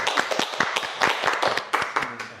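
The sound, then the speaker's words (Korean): A burst of hand clapping from a small group, applauding a program that has kept reducing the suicide rate since 2016: sharp, overlapping claps in a quick, uneven rhythm, fairly loud and steady for a couple of seconds, with no one speaking. “아, 이건 박수 한번 쳐주세요.”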